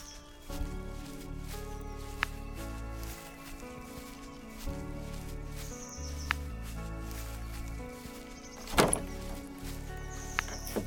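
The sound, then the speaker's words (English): A door creaks slowly open on the Clark Ranch before dawn, over a low, droning tonal background that shifts in steps, with a brief sharp clatter near the end and no one speaking. “The door is opening.”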